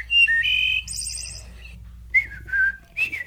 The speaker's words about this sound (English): That's a wood thrush if I ever heard one. It's absolutely a wood thrush. It's so distinctively a wood thrush. I kind of like that.